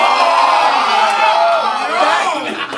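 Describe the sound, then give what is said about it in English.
A large crowd at a rap battle cheers and screams loudly and continuously, with overlapping whoops and shouts forming a dense, sustained roar that stays intense throughout. “See how the crowd get loud, like screaming banshees”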